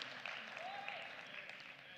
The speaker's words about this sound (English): Somebody give God a hand clap of praise in this place.